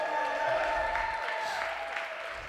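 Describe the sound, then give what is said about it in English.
An audience claps steadily for a couple of seconds, a dense, even wash of applause that holds at a fairly constant loudness, with faint sustained musical tones humming underneath. “Big shout out and round of applause”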